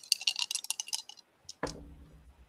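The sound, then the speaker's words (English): Dice rolled on a table during a game clatter and tick in a quick, uneven flurry of light clicks, go quiet briefly, then land with a duller knock that rings on for a moment. No one speaks. “All right, come on, dice, don't fail me now.”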